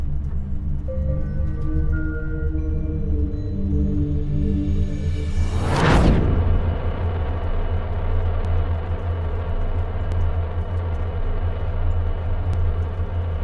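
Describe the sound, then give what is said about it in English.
An engine hum climbs steadily in pitch and intensity as the stick is pushed forward and the craft rockets across the ocean towards Sanctuary, swelling into a loud whooshing surge, then settles into a constant heavy roar. No voices are heard. “And with that, he kind of pushes the stick forward, and you can hear the engine kind of like grow in power as you rocket across the ocean towards Sanctuary.”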